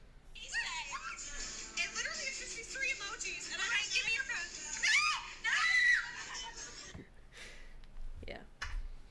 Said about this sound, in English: So this is a TikTok of me screaming at a Halloween party. 3 years, 2.5 years ago, something like that.